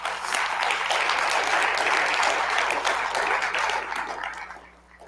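A crowd breaks into sustained applause for the worship team, a dense, steady wash of many hands clapping that holds strong for several seconds before thinning and fading out near the end.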